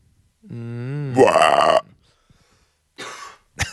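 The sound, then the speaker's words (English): A voice imitates guttural coughing: a long, croaking, belch-like rasp that breaks into a harsh burst, then two short, rough coughs after a pause, loud with no words. “Coughing and all.”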